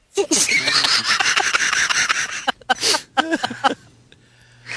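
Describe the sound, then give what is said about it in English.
A dishwasher runs with a loud, rushing whoosh of spraying water that pulses rapidly, cuts out briefly, then surges again, with brief bits of a voice mixed in. “I can't hear you over that dishwasher.”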